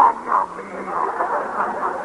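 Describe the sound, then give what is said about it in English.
A bedridden old uncle's croaking, toothless shouting from deep inside a house: a hoarse, garbled, wordless voice that rasps on steadily for about two seconds at a fairly loud level, rising and falling unevenly. “At this moment, a peculiar sound, like the croaking of giant bullfrogs, arises in the dim depths of the house.”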